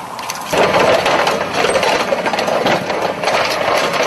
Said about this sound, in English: and just wanted to get the cannon breeches and sort of loading shells where we could and just get in the action of the cannons. Unfortunately, we have a treasure trove of authenticity in this shed over here, so it's sound gold.